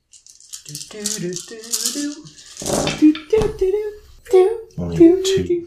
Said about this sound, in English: Oh, and you'll get the stun dice, 2 stun dice. It's only 3. So that's the first attack. Where's the second attack going? The same place. All right, roll those same dice.